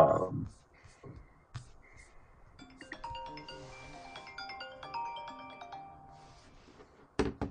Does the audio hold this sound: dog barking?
no